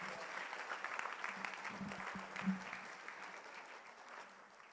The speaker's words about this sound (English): Let's just applaud the Lord, shall we? Let's thank him for his goodness.